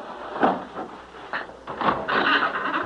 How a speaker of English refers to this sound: Now, come on, I'll push open this wooden bolt that fastens the door.